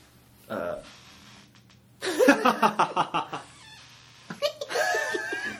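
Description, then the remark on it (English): A new office chair squeaks and creaks repeatedly, a brief whine first, then a rapid run of rhythmic squeals, ending with a drawn-out, wavering squeak, with faint laughter around it. “That's the new chair.”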